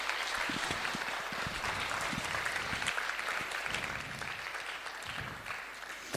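An audience applauds steadily, a dense patter of many hands clapping at even loudness for several seconds before easing off slightly toward the end. No one speaks over it.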